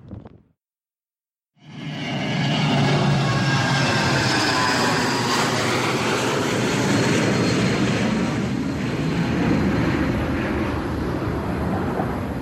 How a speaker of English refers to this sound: Cool, plane.